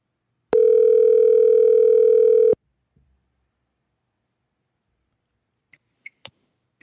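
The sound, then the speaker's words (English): A single steady telephone ringing tone sounds loud and clear for about two seconds as a phone call is placed, then stops, followed by silence and a few faint clicks. “Let's turn the volume up here, see if we can get him on the phone.”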